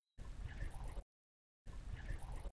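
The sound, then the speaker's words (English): Two short bursts of faint, dense patter like rapidly dripping water, each just under a second long, separated by a brief silence. No voices are heard. “And then towards the end, what sounds kind of like white noise, but if you listen very carefully, and I tried to amplify it, it almost sounds like rapidly dripping water.”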